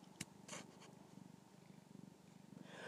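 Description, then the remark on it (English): A male cat purrs steadily in a low, rhythmic rumble while being petted, with a few soft rustling and brushing sounds from the stroking mixed in, and no one speaking. “I am petting a cat. He's meowing and purring and nuzzling and mauling me.”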